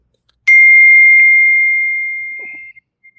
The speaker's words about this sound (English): The hell was that? Text message. That's a lot of text messages I've ever heard in my life, bro. Well, it comes through my phone, and it comes through my laptop as well.